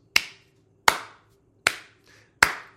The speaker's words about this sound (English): So, I'd like to give an applause to the Orthodox.